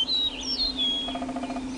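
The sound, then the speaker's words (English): Swallows chirping in a flock: high, quick twittering calls overlap over a steady low hum, with a burst of rapid repeated chirps near the end. “I just turned this knob here, and the Swallows return sooner than later.”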